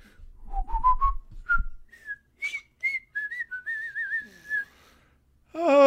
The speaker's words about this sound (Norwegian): Nei, skal vi plystre litt? Ja, vær så god.